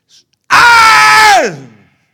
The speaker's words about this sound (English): I had to scream because you won't hear me.